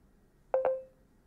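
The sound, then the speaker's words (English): A voice assistant's short electronic double chime signalling that it is listening for voice input: two quick tonal blips in rapid succession, the second ringing out and fading over about half a second, clear against a quiet background with no talking. “I listen after a beep.”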